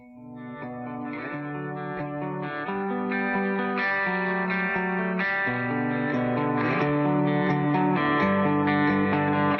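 A new rock song plays steadily with heavily processed, distorted guitars layered in rich harmonics, building to a louder, fuller sound after the first few seconds; no one speaks.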